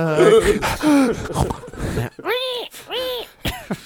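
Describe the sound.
Someone performs exaggerated heavy breathing: a run of loud, voiced gasps and groaning exhales, each rising and falling in pitch, with a few short pauses between breaths.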